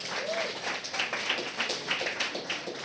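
Steady crowd applause: many hands clapping at once in a dense, crackling wash that stays loud for about three seconds, with small surges. No one is talking.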